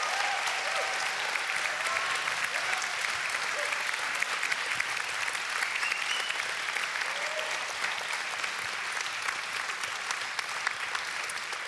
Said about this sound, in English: But give these guys a huge round of applause.